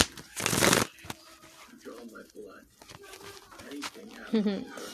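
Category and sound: household object, tarot cards being shuffled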